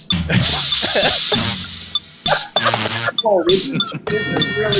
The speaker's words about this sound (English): Not the church bells, not the church bells. The church bells.